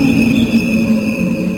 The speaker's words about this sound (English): I don't want to hear no crickets if you're calling.